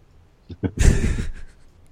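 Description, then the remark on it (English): Pen on paper: two quick light taps followed by a short, scratchy burst of handwriting lasting about half a second, then quiet. “Hopefully I will be able to read that later. My handwriting is impeccable.”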